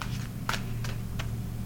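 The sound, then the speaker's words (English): An Aleister Crowley Toth tarot deck being shuffled: four short, crisp papery bursts spaced irregularly, riding over a steady low electrical hum, with no voices. “Now I have shuffled the cards and we shall ask again, Aleister Crowley Toth Deck, what do you think about that set?”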